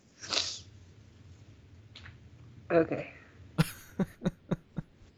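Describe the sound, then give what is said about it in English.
A sharp nasal sniff comes first, then a gruff throat clearing and a quick run of short, choppy coughing bursts, with no talking. “What you need is like a cough button, so every time you need to sniff your nose, you can just go doop and press it, and it'll mute it.”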